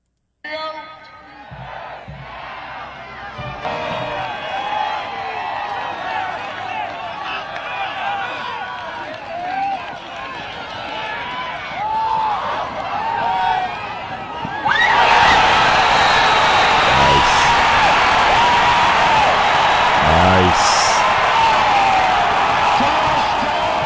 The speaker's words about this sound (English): Yotes trailed Montana Western 35-31 with 5 seconds to play, pulled out the win with a Hail Mary tipped ball for a touchdown. This doesn't have the announcers. This is just the crowd reacting. Take a listen.